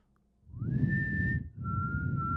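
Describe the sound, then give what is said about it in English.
A person whistles two sustained notes, the first sliding upward into a steady pitch, the second slightly lower, over a low rumbling background noise. “You hear the whistling.”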